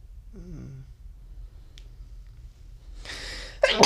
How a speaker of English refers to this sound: Yes, I sneezed.